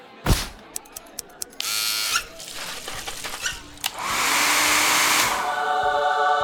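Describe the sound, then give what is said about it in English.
Sharp clicks lead into bursts of buzzing electric hair clippers giving a quick haircut, with a fast whoosh and snips between. A long, steady, loud clipper buzz follows, then fades. No one speaks. “I need you to give me a quick haircut.”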